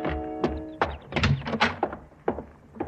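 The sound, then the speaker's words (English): A cottage door creaks open, then a few solid wooden thunks and knocks follow as it swings shut. No one speaks. “shuffling up the walk through Dr. Birdwell's rose garden and through his cottage door”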